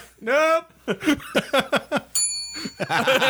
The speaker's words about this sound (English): I forget about that sometimes. The bell.